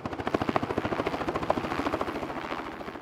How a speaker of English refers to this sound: That's the sound of a helicopter whizzing around above us, ready to test the local sheep for pneumonia and other indicators of herd health.